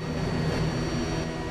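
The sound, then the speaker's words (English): A steady, loud roar of an aircraft's jet engines fills the whole moment, a dense rumbling drone with a faint high whine running through it and no change in intensity. “They are jet engine.”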